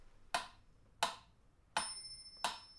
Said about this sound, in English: Get it ticking.